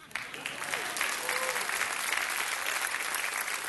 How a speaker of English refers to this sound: Some of you know that we recently celebrated our second church anniversary. Insert loud applause.